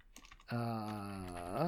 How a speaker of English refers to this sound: God damn it. Why am I so bad at typing?